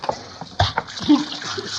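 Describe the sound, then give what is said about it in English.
A quick burst of water splashed from a pitcher, fairly loud, with a sharp splatter near the start followed by softer sloshing and dripping, and a voice murmuring underneath. “Hey, let's have that pitcher of water here.”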